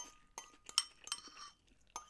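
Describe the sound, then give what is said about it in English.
A handful of light glass clinks at uneven intervals, one ringing briefly, followed by a final clink after a short pause, as someone finishes a drink; fairly quiet, with no talking. “I'm finishing this and it's going to make a lot of clinking.”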